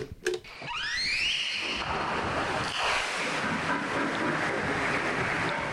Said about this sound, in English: I think this is a tape of a humpback whale making social calls. So you're going to play it on this little weird recording machine?